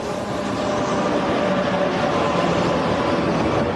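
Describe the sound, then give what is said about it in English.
A train pulls into Gare de Luxembourg station in Luxembourg during the morning rush hour, rumbling steadily: a dense, continuous roar of wheels and machinery with a faint thin whine running through it. Nobody speaks. “A train pulls into Gare de Luxembourg during the morning rush hour, and dozens of commuters alight”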